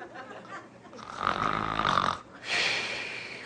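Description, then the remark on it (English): A voice imitates someone snoring after sitting back and kicking their head back at work: a rasping, drawn-out inhale rattles for about a second, followed by a breathy, hissing exhale, fairly loud. “Do you get a reward if you went into work and you sat back and kicked your head back and started snoring?”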